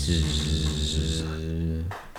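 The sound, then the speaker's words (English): A steady, low droning buzz held for about two seconds at an even pitch, fairly loud, a voice imitating buzzing bees as a background bee sound before trailing off. “I'll give you a little background bee sound.”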